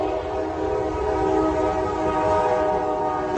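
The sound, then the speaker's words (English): A loud train horn blares in one long, unbroken blast over a low rumbling of the moving train as it hits an 18-wheeler truck carrying titanium piping, with no voices. “This is the train hitting the truck, and I will shut up.”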